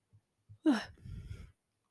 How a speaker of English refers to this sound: I'm yawning because I only yawn whenever I'm recording.